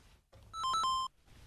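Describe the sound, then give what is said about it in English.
A short electronic phone ringtone chirps once, a quick burst of bright, steady beeping tones lasting about half a second, clear against a quiet background, as a call to a plumber is placed. “and he's been ringing plumbers.”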